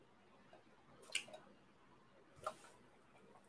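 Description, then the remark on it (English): Two soft, wet sips as a person drinks a bit of water, spaced about a second apart, otherwise quiet with no talking. “Okay, I'm just going to drink a bit of water here.”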